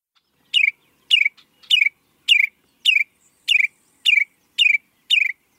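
A bird sings a steady series of nine sharp, descending chirps, evenly spaced about half a second apart, clear with no other sounds.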